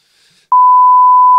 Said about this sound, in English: I'll beep it if he wants, but come on.